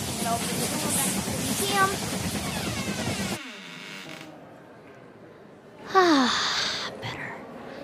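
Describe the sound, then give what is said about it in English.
A steam train engine in an engine room rumbles and hisses loudly, drops to a quieter hum, then lets out a sudden sharp burst of steam with a falling metallic squeal as steam billows out of the engine. “You can see steam billowing out of the engine.”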